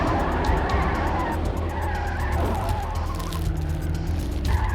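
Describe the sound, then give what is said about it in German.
A getaway car's engine roars steadily with a low, sustained rumble and a high tire screech, as the vehicle speeds off hard without any voices over it. “Fahr schon los! Gib Gas!”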